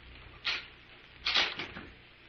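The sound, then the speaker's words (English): A door thuds shut, followed moments later by a cluster of sharper clunks and rattles as it is locked, with no voices present. “Lock the doors, Devers.”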